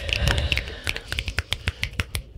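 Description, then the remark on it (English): A quick run of about a dozen sharp finger snaps, several people snapping together in an uneven, scattered rhythm as a poem reading begins, moderately loud with no talking. “Snap your fingers.”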